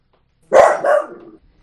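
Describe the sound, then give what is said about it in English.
A dog named Angus lets out a loud, deep bark that trails into a short rough second yelp, barking at a person at the door who is trying to advertise, with silence before and after and no voices. “Sorry, there's a person at my door that's trying to advertise.”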